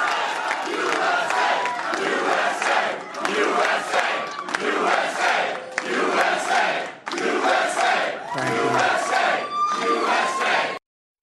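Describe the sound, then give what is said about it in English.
A large crowd at the Trump headquarters in Nashua, New Hampshire, cheers Trump's primary win, chanting "USA" in loud, rhythmic bursts, voices roaring together in repeated surges with whoops and shouts rising above the din, then cutting off abruptly. “Here's a little bit of the crowd at the Trump headquarters in Nashua, New Hampshire.”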